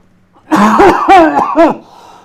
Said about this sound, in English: Yeah, he coughed in my face. And you're like, hey, stoned. Sorry, I coughed in your face.